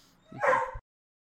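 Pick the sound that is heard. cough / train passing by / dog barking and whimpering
dog barking and whimpering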